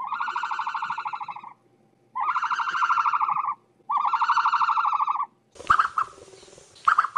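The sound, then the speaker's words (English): An ostrich calls in three long, buzzy, harmonic blasts with short pauses between, loud and steady, followed by a rougher, noisier stretch with a couple of brief calls at the end. “But here's what an ostrich sounds like.”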